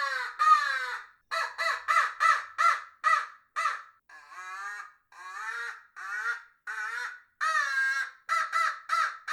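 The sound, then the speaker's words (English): A rapid series of loud, raspy crow caws blown on a handheld crow call, about fifteen short notes in uneven bursts with brief pauses, clear with no talking. “So with this crow call, you can also make a hawk call.”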